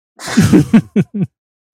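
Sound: sneeze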